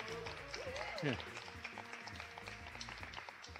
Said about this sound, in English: I think, it's fair to say, the coolest looking audience that we've ever had. So let's make some noise, make some applause noise so we know that you're...